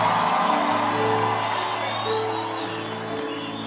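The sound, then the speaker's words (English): A crowd cheers and whoops over dense, steady clapping, giving Jesus a big clap. High voices ring out through the noise, which stays loud for the whole few seconds and fades only slightly at the end. “Give Jesus a big clap of him.”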